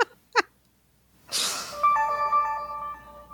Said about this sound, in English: So you're not hearing it ring? It's ringing now. It's not ringing. It's making that weird noise. It's not the same as my ring of my phone.